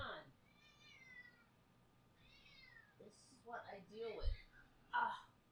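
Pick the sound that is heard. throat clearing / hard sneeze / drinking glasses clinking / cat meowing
cat meowing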